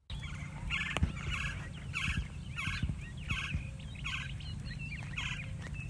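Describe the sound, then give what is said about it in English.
A Gila woodpecker calls in a steady series of about eight short, raspy notes, evenly spaced and fairly loud, over a low rumbling background. “So our third bird is the Gila woodpecker. And we're going to take a moment to find this bird in your guide as we play their call.”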